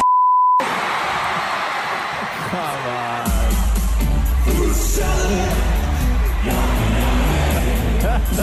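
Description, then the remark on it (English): After a short steady beep, a large concert crowd roars and cheers loudly and continuously as a surprise guest act is brought out on stage, with shouting voices and a heavy low rumble swelling in partway through. “And the crowd goes wild!”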